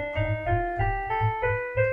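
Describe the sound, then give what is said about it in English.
A minor scale played on a keyboard: about six clear, evenly spaced notes stepping through the scale at a moderate pace, each with a soft attack and sustained tone, with no talking. “But then you also have minor scales, which sound like this.”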